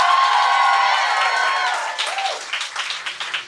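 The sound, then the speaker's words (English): A live show audience bursts into steady applause for a producer, mixed with loud cheers and whoops. The cheering fades after a couple of seconds, leaving thinner, scattered clapping. “So give it up for … one more time.”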